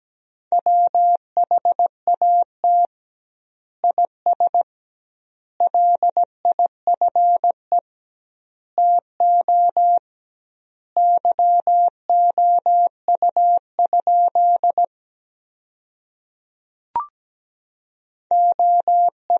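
A steady, mid-pitched Morse code tone keys out a practice sentence built from the 300 most common words at about 17 words per minute, with doubled spacing between words, and a single faint click near the end, no voices.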